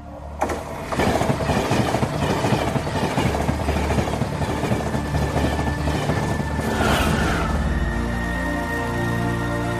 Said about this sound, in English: It's coming. What is? The train.